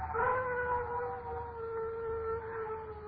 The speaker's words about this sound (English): Dogs howl when ghosts walk.